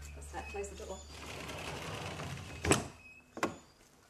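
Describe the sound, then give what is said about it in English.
A door is pushed shut, a sharp thud followed moments later by a second click as it latches, after a few seconds of low rustling and mechanical noise. “Close the door.”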